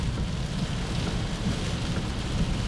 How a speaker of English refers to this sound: Flood watch is in effect for our region. Yeah, it's quite substantial, I must say. So you get the sounds of the rain this morning.